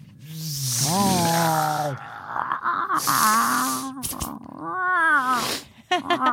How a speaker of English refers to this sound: It's like a like an alley cat fight in here.